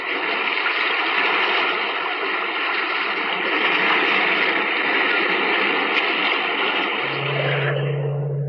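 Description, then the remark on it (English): A loud, steady wash of sea waves rolls on without pause, dense, with no voices; near the end a low sustained tone rises beneath the surf. “Met in this cave by the restless sea to reveal the horror in man's mind.”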